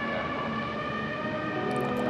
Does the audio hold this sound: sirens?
yes